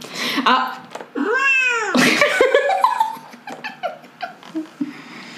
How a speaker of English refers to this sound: AKA my broken laptop is my soundboard. Great. My fucked up laptop that I just downloaded a cat sound soundboard to.